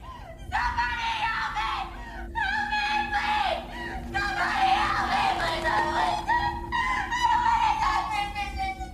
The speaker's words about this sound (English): And, like, remember how I explained there's a difference between, oh, haunted house scream, and I am about to die scream? Well, I believe that this is more of a I'm about to die scream.